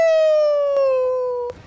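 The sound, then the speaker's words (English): A person lets out one loud, sustained howl, imitating a wolf, holding a bright tone that slides slowly downward in pitch for about a second and a half before breaking off. “And as I jog, I'm going to let loose a full-on howl at this point.”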